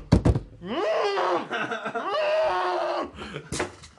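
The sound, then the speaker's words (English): A curved sword is accidentally knocked over and clatters with a quick burst of loud, sharp knocks, then a voice lets out a long, wavering, drawn-out cry, and a final sharp hit lands near the end. “You knocked over a sword, sir.”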